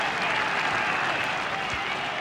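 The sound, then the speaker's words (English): Sustained applause from a massive golf gallery at the first hole as Nick Faldo passes after his tee shot, a dense steady patter of many hands clapping at an even loudness throughout, with no talking over it. “And wait for the applause as he passes this massive gallery at the first.”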